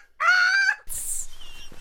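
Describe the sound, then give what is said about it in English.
A person's voice imitates a screeching bird: one loud, strained, rising shriek held for about half a second, followed by a harsh, breathy rasp that trails off. “You couldn't tell that it was a bird screeching?”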